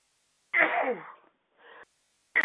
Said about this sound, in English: Hold on a second, I'm about to sneeze here, so.